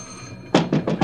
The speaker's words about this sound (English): Open up! Where you been? I've been ringing this bell for 5 minutes.